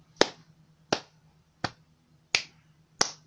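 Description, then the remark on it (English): Five light, crisp hand claps in a slow, even rhythm, each a sharp snap with a short ringing tail, heard alone with no talking in between. “Give it, let's just clap a little bit.”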